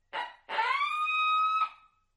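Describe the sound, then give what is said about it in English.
A coyote howl blown on a coyote howler call to prompt roosted birds to gobble: two short yips, then a rising, sustained wail that holds steady before breaking off. It is loud, with no talking. “But I'll hit them with one owl or one coyote howl real quick.”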